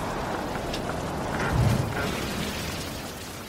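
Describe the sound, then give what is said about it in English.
Heavy rain hisses steadily throughout during a storm at sea, and a deep rumble of thunder swells briefly around the middle before settling back under the downpour. “Dark clouds spat lightning through the thick blankets of rain into the crashing waves.”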